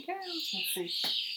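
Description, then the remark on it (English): Birds screech shrilly and continuously outdoors, a steady high-pitched chorus running the whole time, while a voice makes brief sounds over it in the foreground. “I can hear those birds, too. They're screaming.”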